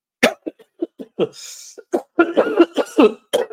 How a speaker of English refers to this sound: Do you know that little bass that kicks in the cough at the end?